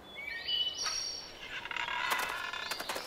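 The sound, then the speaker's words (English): Several birds chirp and tweet in quick overlapping calls, bright high-pitched whistles and trills filling the short stretch with no one talking. “The birds did an admirable job.”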